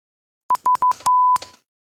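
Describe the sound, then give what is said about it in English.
A run of Morse code–style beeps: several quick, steady mid-high tones in a row, then one longer held beep, each starting with a small click. No one talks. “Oh, bro's gonna start talking to Morse code.”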